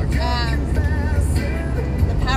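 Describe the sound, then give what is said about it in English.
Steady low engine rumble from inside a car crawling through heavy traffic, a constant drone with faint voices and tonal sounds drifting over it. “this traffic is bumper to bumper right now.”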